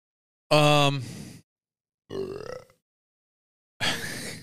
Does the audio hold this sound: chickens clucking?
no